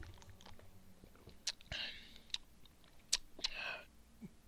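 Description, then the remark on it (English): Quiet sipping of a BRU-1 Crystal Amarillo beer: two short airy slurps with wet lip smacks and small mouth clicks between them, no talking. “So without further ado, let me take a sip of this.”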